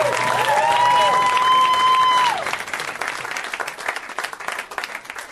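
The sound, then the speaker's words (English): A comedy show audience applauds for Jerrod Carmichael, a dense wash of clapping with a sustained high whoop or whistle riding over it for the first couple of seconds, then the clapping carries on a little softer. “Guys, let's hear it for Jerrod Carmichael.”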